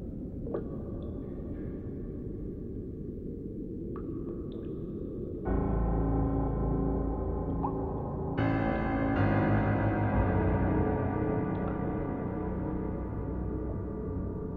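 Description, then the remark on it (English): Creepy dungeon-like ambience from a soundtrack that is half sound design, half score: a dark, steady low drone with occasional sharp water-drip plinks and moaning tones, the layers swelling louder and denser partway through, with no voices. “And so there's like ambient, kind of creepy dungeon stuff happening, like drips and weird, like moaning and stuff.”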